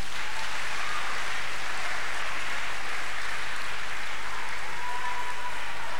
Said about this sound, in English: By the grace of God, from today, each time we clap, we should follow it up with the word glory to God. Can we clap our hands now?